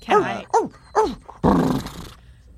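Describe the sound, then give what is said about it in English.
A dog barks three times in quick succession, loud, then lets out a longer, harsh growling bark before falling quiet. “And it starts barking at you a lot.”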